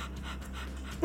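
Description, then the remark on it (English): An anxious dog having a panic attack, sitting on a bed, pants heavily and quickly, a steady run of rapid breathy huffs, ending with a brief, thin whine. “That's him breathing through it, working through his little panic attack.”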